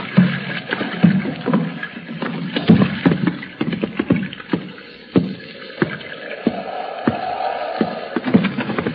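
A rowboat moves through water, with wooden oars knocking and splashing in an uneven rhythm over a steady watery wash, at moderate volume, with no voices.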